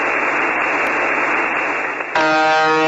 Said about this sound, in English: They say it's been going like this since the start, whenever that was. Sometimes the buzzer stops and a male, robotic-like voice lists names and numbers in Russian.